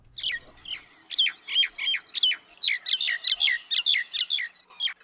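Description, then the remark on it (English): A common myna sings a fast, chattering series of sharp whistled and gurgling notes, about fifteen in quick succession, clear with no other sounds. “It's the myna. Myna birds are everywhere, literally.”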